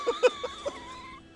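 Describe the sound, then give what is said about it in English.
A horse whinnies in a battle, starting with a few sharp bleating bursts before settling into a thin, wavering cry that trails off after about a second. No one is talking. “Oh, not the horse.”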